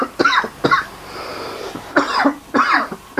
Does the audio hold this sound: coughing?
yes